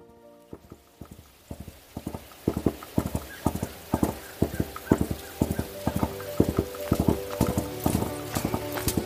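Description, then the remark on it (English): Horse hooves clip-clop in a steady, brisk rhythm, fairly loud, as a rider crosses the fields on horseback, the regular knocks continuing throughout with no voices present. “A few years later, Pao Kong is crossing the fields on his horse.”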